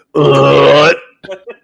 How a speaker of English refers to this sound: No, that was a burp, dude. I know, but it sounded so good.